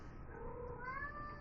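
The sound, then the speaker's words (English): A cat yowls in a long, drawn-out caterwaul, its wavering cry rising in pitch and holding steady, with no talking over it. “Or they scream in the background of a podcast because there's really nothing else that they can do during this time, like sleep or anything.”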